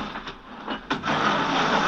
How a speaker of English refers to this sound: So if you hear some banging, crashing, some scraping, smashing. There's a great scraping sound that I sent to Nick, which is.